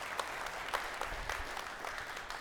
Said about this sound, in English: Thank you for the clapping.